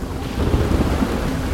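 Heavy storm noise from Hurricane Andrew nearing the shore of southeast Florida, its center about 40 miles due east of Miami: deep rumbling thunder and steady pouring rain, a loud continuous roar that swells slightly partway through, with no voices.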